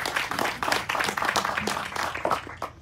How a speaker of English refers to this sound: Let's clap for her. Let's clap for her. Let's clap for her.